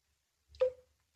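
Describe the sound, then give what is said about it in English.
A single drop of water drips from somewhere on the wall of a still room in a narrow street in Edinburgh, Scotland: a clear plink with a short ringing tone and a soft low thump, surrounded by silence. “Someplace on the wall there was a drip. When the room was still, when there was a lodger in it, asleep, that was the sound.”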